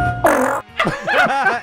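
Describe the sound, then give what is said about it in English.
A loud recorded elevator fart: a short raspy burst, a brief pause, then a longer squeaky, wobbling stretch that bends up and down in pitch before trailing off. No one speaks. “This was this is …'s elevator fart.”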